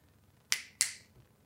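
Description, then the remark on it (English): Two sharp finger snaps, about a third of a second apart, each a bright crisp crack that fades quickly, with no talking around them. “But I went like this. I fucking snapped them.”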